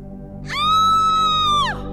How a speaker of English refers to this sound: A blood-curdling scream echoed across the heavens.